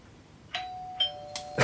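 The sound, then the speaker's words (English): A doorbell rings out alone in a quick run of four bright chimes, each struck tone ringing on and overlapping the next, growing a little louder toward the end. “Somebody's at the door to tell us the news.”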